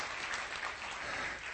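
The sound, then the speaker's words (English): Steady applause from a morning audience at Bridgeway church welcoming guests, a dense even wash of clapping that holds at a constant level for the whole short stretch with no voices rising above it. “You can clap for that.”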